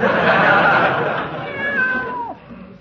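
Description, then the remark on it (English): A cat named Aesop lets out a long, drawn-out meow that rises and then slides downward, fairly loud, ending in a falling whine after nearly three seconds. “Give the cat a boot”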